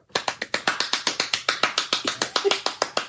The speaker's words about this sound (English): Dude, are you clapping next to the mic?